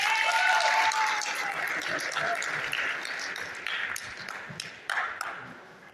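A crowd claps in a dense, steady round of applause that holds for several seconds, with sharp individual claps popping out, then gradually thins toward the end.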